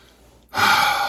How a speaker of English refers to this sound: So let's do a little bit of breathing.